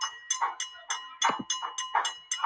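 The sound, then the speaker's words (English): A wrestling ring bell clangs rapidly at a match between Johnny Dotson and Gene Silver, roughly nine sharp metallic strikes in quick, steady succession, loud with a ringing tone, and no voices. “I mean, that's you got that bell.”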